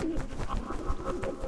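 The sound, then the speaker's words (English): A pigeon called Herman Moss coos in low, throaty warbles, steady through a short stretch, with a faint rustling background underneath and no one talking. “Me versus Herman Moss, the most feared pigeon on the block.”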